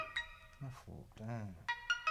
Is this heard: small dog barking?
no